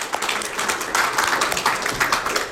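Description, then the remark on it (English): A crowd applauds with steady, dense clapping that holds at an even loudness throughout, a bright crackling wash of many hands with no voices standing out. “Just gonna give another round of applause.”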